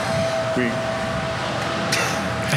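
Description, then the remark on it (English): A blender runs steadily while dressings are being made, a constant loud whirring roar with a thin, unwavering motor whine beneath it, and a few faint brief clatters near the end. “If you can hear that, that's the blender.”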